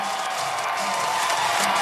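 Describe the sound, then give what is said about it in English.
A stadium crowd cheers Arnold Schwarzenegger as he comes into the stadium after becoming governor, in a steady, dense roar, a wash of many voices that holds at an even, fairly loud level without pause. “Yep, all the people cheering.”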